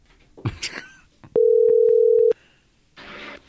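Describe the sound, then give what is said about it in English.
A telephone ringback tone sounds once during an outgoing call, a single loud, steady electronic burst lasting about a second, preceded by brief rustling noises and followed by a soft hiss. “We have the phones. We have the capability. Ooh, that rings right in my ear.”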